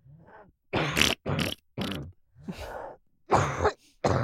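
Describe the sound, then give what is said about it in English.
A woman coughs: three quick, harsh coughs in a row, then a few more rough, throaty coughs after a brief pause, fairly loud with no talking. “You know the cadence of her cough? It's always three.”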